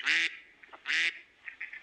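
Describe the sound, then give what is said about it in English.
Two loud, harsh duck quacks from Lionel the duck, a novelty screaming lapel pin, ring out about a second apart, followed by a few softer, clipped squeaks trailing off at the end. “and of course our brand new item, Lionel the duck.”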